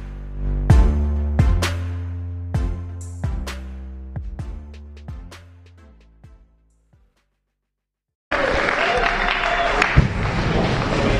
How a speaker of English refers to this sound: Let's give a round of applause for the band and the brothers and sisters singing to the Lord this morning, or this afternoon, rather.